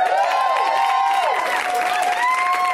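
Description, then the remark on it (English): A comedy show audience claps steadily and loudly for the comics in back while voices whoop and cheer over it, their shouts rising and falling in pitch for the whole few seconds. “Let's hear it for the comics in back.”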